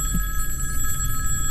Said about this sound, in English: So the phone rang at 3 o'clock in the morning.